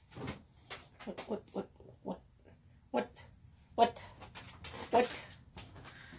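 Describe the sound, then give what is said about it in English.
A dog named Nyla pants and snuffles in quick, irregular breathy bursts, with soft rustling as it shifts around; a couple of louder huffs stand out near the end. “My dog Nyla's with me on this podcast.”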